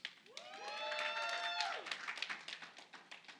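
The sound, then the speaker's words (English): A church audience at CentrePointe Church claps steadily, with rapid overlapping claps, while a few voices whoop and cheer in rising, then held, high tones during the first two seconds before the applause carries on alone. “I don't think anybody on this side clapped.”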